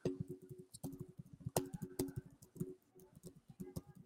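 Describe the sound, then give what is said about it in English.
Rapid, forceful typing on a computer keyboard with a dense, uneven stream of sharp clacks and key strikes, fairly loud, over a low steady hum. “June, I'm gonna have you typing mad hard out here.”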